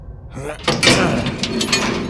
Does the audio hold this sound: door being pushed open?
yes